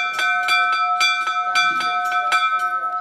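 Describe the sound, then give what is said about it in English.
A hand-rung lunch bell clangs rapidly and loudly, about a dozen quick metallic strikes in a steady rhythm, its bright ringing tone sustaining between hits, with no voices. “this is a lunch bell as rung by Robert Powell”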